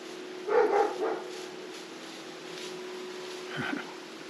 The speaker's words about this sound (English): And just allowing the sound of the dog, the sound of the chimes, the sound of the room around you.